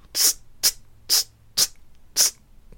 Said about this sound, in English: And he, good, handsome guy, fit guy, but he does sneeze like a kitten.